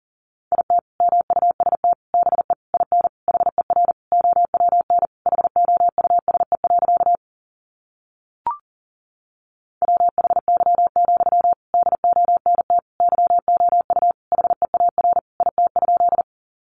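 Fast Morse code at about 40 words per minute, sending sentences made from the top 300 words: a single steady mid-pitched tone keyed in rapid dots and dashes, two long runs separated by a pause broken only by a brief click.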